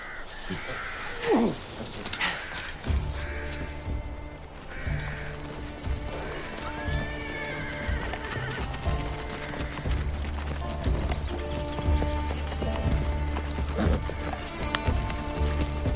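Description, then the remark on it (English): Horses led down a hill by a boy: hooves clip-clop in a steady, uneven rhythm, with a short whinny near the start and a low, sustained drone humming underneath throughout. “The boy shall lead our horses down the hill.”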